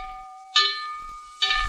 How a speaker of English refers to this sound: The bell made a horrible racket over me, and the sound grew in waves as I approached it, making me dizzier and dizzier until I almost let go.